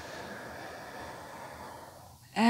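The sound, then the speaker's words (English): A long, steady inhale drawn in deeply through the nose during a guided stretching exercise, fairly quiet, lasting about two seconds before a voice begins speaking right at the end. “Breathing, inhale through the nose.”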